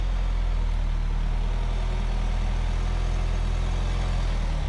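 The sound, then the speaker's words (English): A Santa Fe SUV engine runs steadily at low revs while maneuvering in a driveway with the clutch slipping, a deep continuous rumble with a faint strain as the vehicle creeps along. Fairly loud, with no talking. “you do have to slip the clutch and you kind of got to pay attention even with hundreds of laps under your belt in a car”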